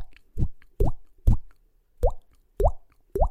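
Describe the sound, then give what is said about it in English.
A person imitates water dripping by popping their cheek, making six hollow plops with a rising pitch, spaced irregularly about half a second apart, with silence between them. “I'm doing that with my cheek. I'm trying to make a drip noise.”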